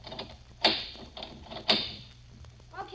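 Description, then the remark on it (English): Locks on a store door with three locks are turned and unlatched to open it, two sharp mechanical clacks about a second apart, faint rattling and clicking in between, and a brief murmur of a voice at the end. “You must have returned one of the two locks you'd already unlatched instead of getting the third one you missed.”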